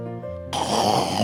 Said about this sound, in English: One of these days we were praying. As we were praying, somebody on the line, he was snoring. I said, hey, who is this? Did you hear it? Did the people hear it? Yes. Somebody was snoring.